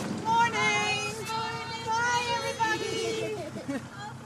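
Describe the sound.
A school bus that takes a child to the CRC school for children with special needs arrives and idles with a steady low engine rumble and a faint mechanical whine, while indistinct voices chatter around it.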